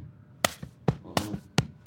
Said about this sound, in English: you don't actually need a drum to keep the basic Sega beat. You can use your body. It's one clap and two hits on the chest.